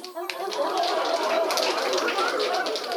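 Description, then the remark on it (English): A dense, steady clatter of overlapping claps and quick taps, the tapping of penguins at a fire and ice dancing skating competition and the clapping of seals judging it, bright and busy, holding a fairly even loudness throughout with no clear pauses. “Oh, so that's why they're tapping. Yeah, and do you hear that clapping?”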